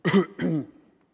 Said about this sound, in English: I think about three times in my life when I have been speaking in a public realm, I get a coughing spell and can't control it. And a couple of times just had to walk off the platform.